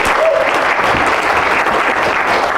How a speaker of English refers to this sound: Big round of applause